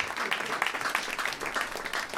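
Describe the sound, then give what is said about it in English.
A comedy show audience breaks into applause for comic Kyle Clark, a dense, steady patter of many hands clapping at once, holding a fairly even loudness throughout the brief stretch. “Give him a round of applause, Kyle Clark.”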